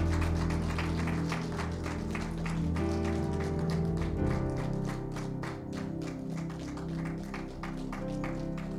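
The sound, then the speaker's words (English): A church audience claps steadily for several seconds to encourage people who have come forward, a dense patter of many hands that stays fairly even in loudness, with sustained low musical tones playing underneath. “So let's give them a clap.”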